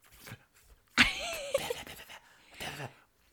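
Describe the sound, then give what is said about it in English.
Breathy, gurgling bursts of bubbles blown through a straw into water, one long irregular bubbling run followed by a shorter burst, fairly loud with no talking. “Oh, I'm making bubbles. Can you hear it?”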